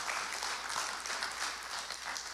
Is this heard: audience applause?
yes